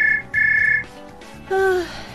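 A phone rings in two short, steady high-pitched electronic bursts, followed by a lower tone that slides slightly downward. No one speaks.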